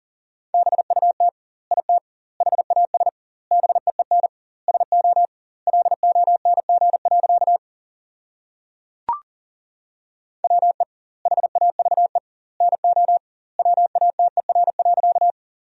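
Rapid Morse code beeps at 40 words per minute on a single steady mid-pitched tone, short and long pulses bunched into words with doubled word spacing between, sending sentences built from the top 100 words, broken once by a long pause and a sharp click.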